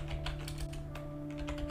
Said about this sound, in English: Also, sorry if you can hear my typing.